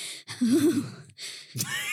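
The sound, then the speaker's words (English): A voice imitates quickened breathing and a shudder: a few breathy, gasping bursts separated by short pauses, one carrying a low, wavering, trembling vocal tone, followed by a sharper gasp. “Her breathing quickened and she shuddered.”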